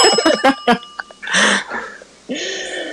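A quick burst of bright, metallic bell rings, several short dings in a row, followed by a noisy whoosh and a sustained ringing tone, loud.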